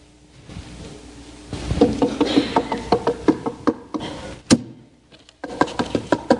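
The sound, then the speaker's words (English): Quick, rhythmic footsteps of a person running into a house, followed by a single loud slam of the door behind them, then more brisk steps to the table and light knocking bumps on a wooden surface. No one speaks. “That was me running into the house, slamming the door behind me, and then getting to the table.”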